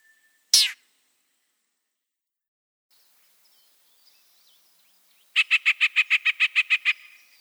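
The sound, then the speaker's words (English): A yellow-breasted chat, the largest warbler in the eastern U.S., sings outdoors: one sharp, raspy burst, a stretch of faint twittering, then a quick, evenly spaced series of about ten loud, harsh call notes. No one speaks. “Here are the little call notes at the end that get my attention to listen for the raspy sound of the chat.”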